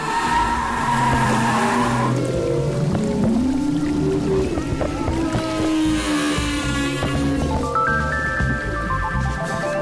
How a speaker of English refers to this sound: Jim Darling will spend the rest of the year analyzing his latest observations about humpback whale behavior and their haunting songs.